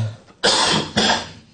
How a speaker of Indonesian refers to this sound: Gak apa-apa, ada batuk, biar aja, iya, selain, ya.